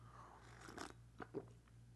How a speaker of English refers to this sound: and my second coffee here, I'm gonna take a sip before I forget.